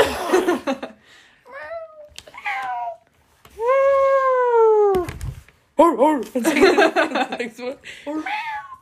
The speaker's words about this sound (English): It's a terrible meow.